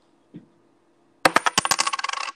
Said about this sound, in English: You know what? I'm going to have to coin flip it. Nice sound effects. I got my quarter. If it lands heads, I'm going Thunder. Tails, I'm going Denver.